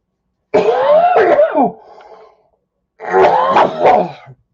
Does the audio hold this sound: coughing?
yes